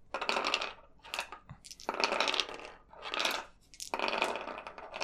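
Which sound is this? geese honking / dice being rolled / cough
dice being rolled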